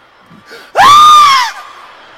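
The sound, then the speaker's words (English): A person loudly imitates the pained scream of a child being hit by a parent: one sharp, high-pitched "ah!" that rises quickly, holds for under a second, then cuts off, with a brief faint breathy sound just before it. “Then after that pause, it's a scream.”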